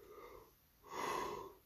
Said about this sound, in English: Excuse me, I just yawned.